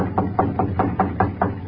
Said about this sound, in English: I'll knock on the kitchen door. The shades are up, but I don't see nobody. Well, I'll try again.